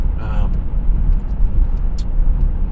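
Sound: road traffic passing by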